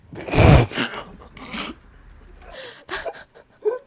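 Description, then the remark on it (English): A small dachshund, trying to jump into a car, hits its head and lets out one sharp, loud yelp, followed by a few softer whimpering cries and light scuffling over the next few seconds. “It's just a little yelp. Yeah. So it's this cute little wiener dog yeah. trying to jump inside, and he hits his head”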